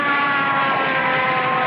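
A fire engine siren blares loud and steady, a continuous tonal wail with rich harmonics and a rumbling vehicle underneath, with no voices.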